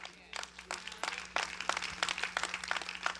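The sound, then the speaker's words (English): An audience at Faith Church claps in a steady, dense patter of many hands for about three seconds, moderately loud and continuous, with a faint low hum underneath and no clear speech. “Y'all remember, you're clapping today when we change things at Faith Church to reach the next generation and not entertain the previous generation.”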